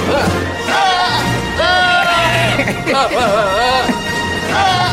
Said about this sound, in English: These are actual goats. These are goats. This is actually a recording of goat yoga. This is goat yoga. Very relaxing, wouldn't you think?